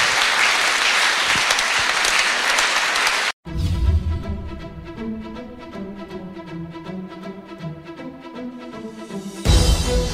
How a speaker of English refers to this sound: Praise the Lord. Here we go. You can give the Lord a hand clap.